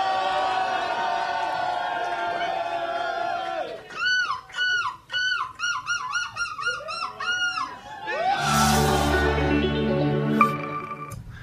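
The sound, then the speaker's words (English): A man's voice imitates a seagull at the 2023 European seagull screeching championship in Belgium, first with a long nasal wail, then a rapid series of rising, yelping screeches, ending in a harsh burst as a crowd erupts into cheering. “That's the dude in Belgium who just won the seagull screeching contest.”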